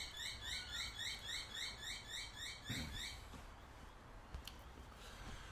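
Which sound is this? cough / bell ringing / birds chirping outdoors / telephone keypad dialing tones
birds chirping outdoors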